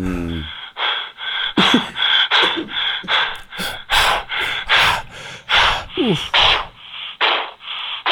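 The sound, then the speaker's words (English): Heavy, ragged breathing from a played recording, a steady run of loud gasping inhales and exhales roughly twice a second, with no talking over it. “I got to play this. Oh. The Mel Gibson breathing thing.”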